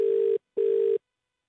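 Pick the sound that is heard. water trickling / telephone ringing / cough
telephone ringing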